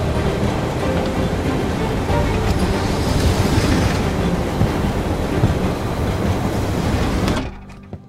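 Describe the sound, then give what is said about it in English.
A loud, steady roar of a moving train, heard out on the cold connection between railroad cars, rushes with wind and rattling clatter, then cuts off abruptly near the end, leaving near silence. No one speaks. “Wow, even the luggage car feels warm after being outside on the connection.”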